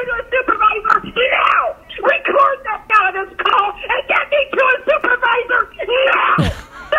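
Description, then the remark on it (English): A woman shrieks and wails loudly over a tinny telephone line during a customer service call, her voice cracking in long, rising bursts with brief pauses between outbursts, ending in a sharp click. “Well, you know, not long ago, we were talking about the lady that just lost her stuff on a customer service call.”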